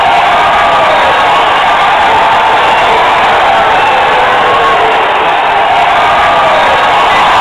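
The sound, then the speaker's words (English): A loud, dense crowd cheers continuously, a roaring wash of many voices shouting and whooping together without a break, steady throughout. “No, that's part of just some scrambled cheering.”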